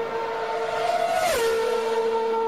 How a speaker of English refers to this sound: Like, you're gonna be in this grandstand right here, off Jefferson, and that's what cars are gonna be doing right by you. Literally.